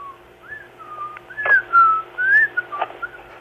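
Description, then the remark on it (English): A seven-month-old baby boy whistles softly in a string of short, wavering high notes, breathy and uneven, with a couple of airy puffs between them and no talking. “Can you hear him slightly whistling a bit?”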